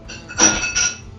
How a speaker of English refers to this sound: It sounded like he was making ice. It was ice going in a glass.